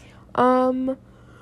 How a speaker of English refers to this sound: I keep yawning.